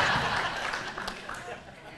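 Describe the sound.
A church audience claps together for a pastor during a morning service, a steady, dense wash of hand claps that carries for the whole stretch, with crowd voices murmuring underneath.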